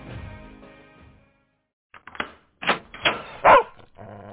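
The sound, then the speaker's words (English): A dog barks in a run of sharp bursts that grow louder, coming right after a short silence that follows a fading tonal sound. “That time you got home from a week of double shifts, and your dog didn't recognize you.”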